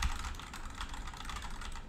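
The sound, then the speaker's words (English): Rapid, continuous typing on a SteelSeries RGB gaming keyboard placed behind the microphone, typed lightly yet loud, with dense clacky keystrokes filling the whole stretch and no voices. “For my keyboard, I'm using the SteelSeries RGB keyboard.”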